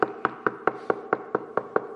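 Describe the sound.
A rapid, steady series of about ten knocks on a door, evenly spaced, each one a firm, hollow rap, with no voices alongside.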